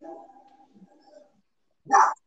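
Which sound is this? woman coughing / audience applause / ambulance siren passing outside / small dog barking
small dog barking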